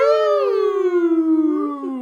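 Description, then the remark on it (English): A voice imitates a falling slide whistle sound effect used as characters fall off a building in RoboCop: one steady, loud, sustained tone that glides gradually downward in pitch for about two seconds with a slight waver near the end. “With a goddamn slide whistle sound effect.”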